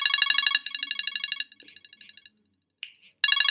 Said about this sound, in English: This is ridiculous. You're getting a phone call in the middle of the... I mean, what the hell...